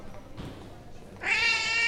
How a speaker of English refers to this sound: Damn cat. Get me into even more trouble, why don't you?